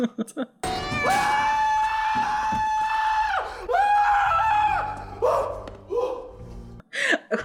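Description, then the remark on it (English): A loud, high-pitched terrified scream by some lockers, held for several seconds, briefly breaking and then resuming in shorter anguished cries, piercing, with low rumbling noise underneath toward the end. “They walk over to some lockers. The famous scream.”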